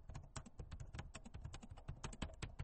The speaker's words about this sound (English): You know, if people could see how much I hunt and peck on my computer. I never took typing. I can type fast, but it's all hunting and pecking. And I've been told it looks comical how quickly I type while not typing correctly.